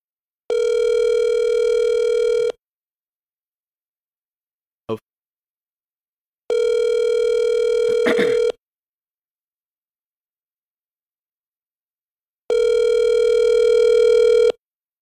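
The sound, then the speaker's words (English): An outgoing phone call rings out three times, each long steady two-second ring followed by a few seconds of silence, with a brief click between the first and second rings, before the call is forwarded. “You remember what I said about how he's gonna answer the phone?”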